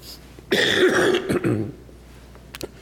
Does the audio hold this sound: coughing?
yes